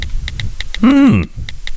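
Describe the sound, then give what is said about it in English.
A steady run of small, sharp button clicks, evenly spaced, pauses briefly while a short voiced sound rises and falls in the middle, then the clicking resumes. “Pressing buttons, I am.”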